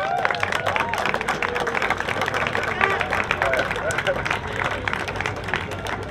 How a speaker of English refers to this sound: So just a round of applause for Roscommon there.